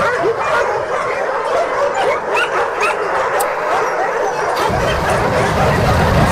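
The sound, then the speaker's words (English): A chaotic chorus of many dogs barking, yelping and whimpering all at once at the annual Yulin Dog Meat Festival, loud and continuous, with overlapping high-pitched cries filling the space and no clear pauses. “Oh, this? It's the annual Yulin Dog Meat Festival.”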